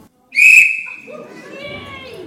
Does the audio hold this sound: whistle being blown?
yes